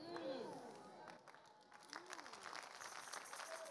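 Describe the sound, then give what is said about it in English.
A voice speaks briefly during a sermon, then a crowd breaks into steady applause, many hands clapping at once in a dense, moderately loud wash that carries on to the end. “Can I add this one before you clap?”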